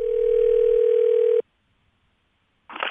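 A steady, loud telephone dial tone hums for over a second while a call is being placed, then cuts off abruptly into silence before a brief voice begins at the very end.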